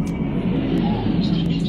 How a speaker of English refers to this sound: A Russian jet, sort of on a bombing run, let go of a missile that hits nearby.